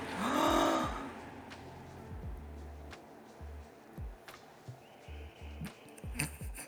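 A loud, dramatic gasp right at the start, a sharp breathy inhale with a rising vocal tone, followed by quieter low thumps and shuffling noises.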